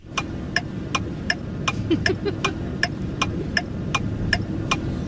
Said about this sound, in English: I know this one way too well. That's definitely a blinker. Yep. Absolutely. Oh, yeah. Or a turn signal, but a blinker.